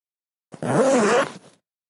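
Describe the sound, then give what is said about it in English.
A single drawn-out zipping sound, about a second long, made by a voice imitating a zipper being pulled up on a suit, with a buzzy, rising-and-falling tone, fairly loud. “As we zip up our suit, zip.”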